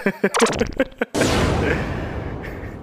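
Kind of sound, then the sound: sound effect, gunshot sound effect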